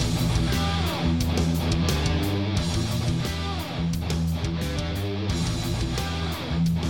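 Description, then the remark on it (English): A loud, heavy metal guitar riff plays with a full band, thick low chords repeating in a steady groove over pounding drums and crashing cymbals, with no talking. “But that riff, that was the riff from the song.”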